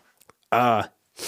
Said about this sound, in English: I think I apologize for all the sniffling. I've had a terrible cold for like a week and I'm just now getting over it.